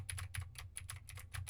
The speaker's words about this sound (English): Now I'm typing on a keyboard with Gateron Blue switches to see how much of my voice versus how much of the keyboard it picks up.